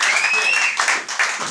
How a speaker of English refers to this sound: Here we go, everyone, massive, fucking massive applause. No arms are tied. Just go for a big applause. Here we go. One, two, three, yes!